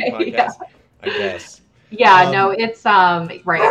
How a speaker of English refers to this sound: And so, as my St. Bernard barks loudly, let me see if I can make... I guess, is this an occupational hazard of having a vet podcast?